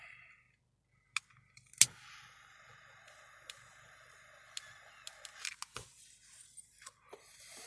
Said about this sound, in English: Let me light this joint back up. First and foremost, oh man, this shit's acting up.